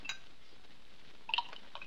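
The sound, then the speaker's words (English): A drink is poured into a glass, with a soft steady trickle and a couple of light glassy clinks near the start and end. Quiet, with no talking. “Your glass is empty. Like another one?”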